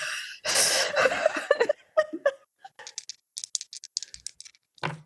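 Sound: voice imitating heavy breathing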